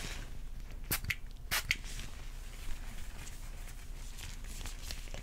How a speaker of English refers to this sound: I have a little mist here. I'm just gonna spray it in front of you. It's a very familiar scent.